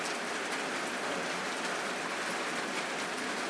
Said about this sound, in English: It's a Sunday night, a rainy Sunday night, if you can hear the rain. I'm sure you can.